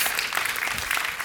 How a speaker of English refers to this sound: Let's give him a little round of applause, right?